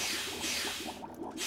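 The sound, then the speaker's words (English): A second steam generator is activated and starts up: a steady, fairly loud hiss with irregular bubbling and gurgling pops running underneath it, no voices. “Now steam generator 2, activated.”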